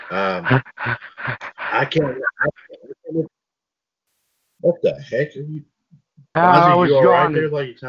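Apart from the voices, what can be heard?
repeated yawning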